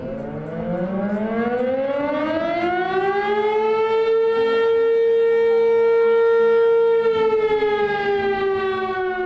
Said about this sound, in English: The deafening siren blares across the Carson Valley. For some people here, it's a reminder of the area's racial past.